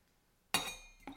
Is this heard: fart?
no